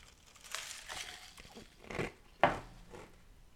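A sip from a drink, with soft slurping and crinkly handling noises spread over a few seconds and one sharp click partway through; no one speaks.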